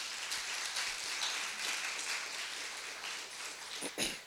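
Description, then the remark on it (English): Steady applause from a church audience giving a clap offering at a morning service, a dense wash of many hands clapping at once that holds evenly throughout, with no voices on top. “Can we give the Lord a clap offering this morning?”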